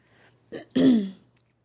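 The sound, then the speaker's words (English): A quick throaty catch followed by a short, voiced burp with a falling pitch, moderately loud, with no talking around it. “I'm like burping and like sneezing and I don't know what's going on.”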